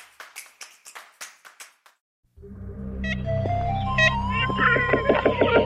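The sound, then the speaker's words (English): A run of sharp knocks from an ivory-billed woodpecker, the largest woodpecker native to North America, taps out first, then stops; after a pause, its nasal, tooting calls repeat over a dense, rumbling outdoor background, clear. “The sounds of a bird we may never see or hear of again.”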